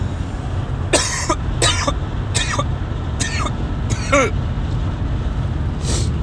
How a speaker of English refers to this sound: And I'm going to pause so I can cough my head off.